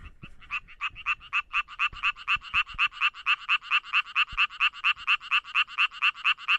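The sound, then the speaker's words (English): The mating call of a male frog infected with chytrid fungus: a fast, steady train of rasping pulses, roughly five per second, repeating loud for several seconds with no voices. “the frogs that were infected with this chytrid fungus, the infected males were slightly larger than the uninfected males, but their call was also different too. It was faster and longer, and you can hear a sample of that here.”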